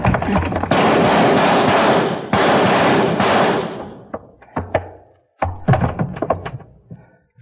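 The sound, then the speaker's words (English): A loud, sustained crash of wood splintering as a door is smashed in, followed by a rapid series of sharp gunshots, with no voices. “I'll shoot the lock, and then we go in. All right, hit the door.”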